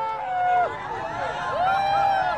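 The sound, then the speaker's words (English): A crowd watching a total solar eclipse as the sky darkens toward totality, many overlapping voices murmuring and calling out, with a few rising, excited exclamations swelling over a steady, moderately loud babble. “I'm going to let you listen to the crowd here for just a moment.”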